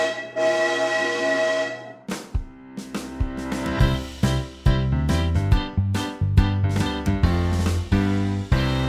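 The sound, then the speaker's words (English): A steam train whistle sounds a sustained, bright tone for two seconds, then gives way to a loud, rhythmic chugging that keeps a steady, driving beat to the end. “Chug, chug.”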